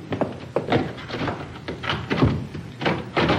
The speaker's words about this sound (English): Good idea. I'll lock the door.